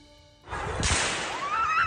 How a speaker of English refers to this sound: The sound of gunfire at one of Denmark's biggest shopping malls. There was terror and panic as shoppers ran from a man holding a rifle in a busy shopping centre on a Sunday afternoon.